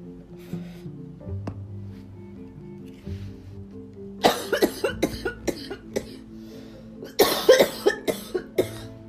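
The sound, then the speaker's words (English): A fit of harsh, repeated coughing, several bursts in rapid succession, then a second loud round of hacking coughs from someone choking on smoke, over a low steady background hum. “Dog, I flipped this card over and started to choke on my smoke.”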